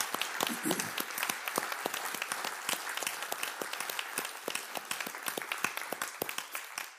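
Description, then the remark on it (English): A crowd applauds the veterans steadily for several seconds, dense overlapping claps forming a bright, sustained wash of sound with sharper individual claps standing out throughout. “Let's have a round of applause for all of you.”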